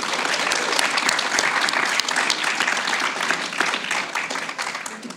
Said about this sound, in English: Okay, studio audience, let's give Alicia Alonso a big kids' conference round of applause.